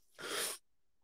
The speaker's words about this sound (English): Oh, almost sneezed.